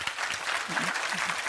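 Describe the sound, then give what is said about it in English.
An audience claps their hands for God in a steady, dense wash of applause, many overlapping claps blending into continuous noise at an even, moderate loudness throughout. “Go on, clap your hands for him.”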